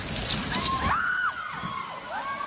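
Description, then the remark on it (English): Heavy rain and hail, with hailstones around 5 centimetres in diameter, pound down in a dense, steady roar at Taormina near Coffs Harbour during an afternoon downpour, while a faint wavering siren-like tone rises and falls in the background. No one speaks. “Under the weight of rain and hail, a ceiling collapses at Taormina near Coffs Harbour, leaving shoppers stunned.”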